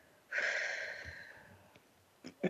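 A slow, breathy exhale out through the mouth like through a straw, fairly loud at first, with a faint whistly edge as if through pursed lips, tapering off gradually before a couple of soft clicks.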